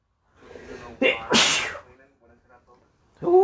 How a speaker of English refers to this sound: Big sneeze.